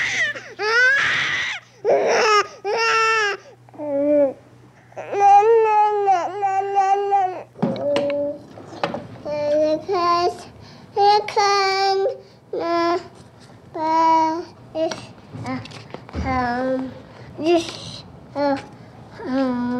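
A sped-up recording by radio producer Tony Schwartz of his baby niece, compressing her from birth to age 12 into 2 minutes 12 seconds: crying and babbling, with high, chirpy bursts of wailing and cooing that rise and fall in quick succession, broken by short pauses.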